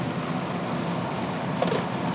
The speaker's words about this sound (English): You guys can all hear the rain in the background.